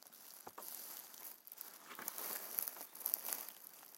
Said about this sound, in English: And then she heard a rustling sound behind her, and then a branch cracked.